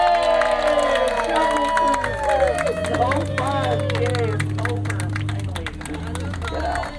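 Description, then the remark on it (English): A small crowd of boat passengers bursts into applause and cheering at the end of a jungle boat cruise ride as the boat approaches the dock, with scattered whoops over steady, dense clapping that carries on for several seconds against a low rumbling hum. “Give yourselves a huge round of applause.”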